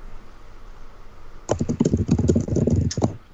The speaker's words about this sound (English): A lot of typing happening. Freaking me out.